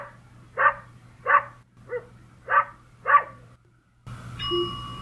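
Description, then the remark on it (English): A dog barks five times in a steady, evenly spaced rhythm, clear, then the barking stops and a brief ringing electronic tone follows, in a recording demonstrating a home routine's response to a barking dog. “In particular, what would happen if a dog was barking?”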